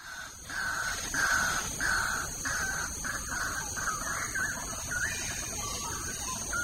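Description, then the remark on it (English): Forest ambience in Clementi Forest in the morning, filled with birds: a run of harsh, crow-like caws repeating in quick succession, then looser, varied calls, all over a steady high-pitched hum and a low rumble, with no traffic noise. “So, I mean, we're here in the middle of Clementi Forest, and as you can hear, it's quite noisy.”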